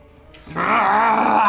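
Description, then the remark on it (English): A voice imitates the hissing, spitting snarl of Gollum, a chameleon-like creature, as it is grabbed: a brief, quiet breathy start, then a loud, raspy, strained sound that holds steady for about a second. “It hisses and spits as you grab it, shouting, "Let me go!”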